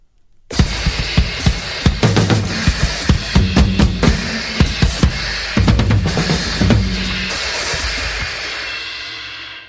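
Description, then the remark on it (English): A drum set is played loudly with drumsticks without any steady rhythm: erratic, clattering hits on drums under a constant wash of crashing cymbals, starting abruptly after a moment of silence and never settling into a beat. “So I sat down on this drum set. I picked up these sticks.”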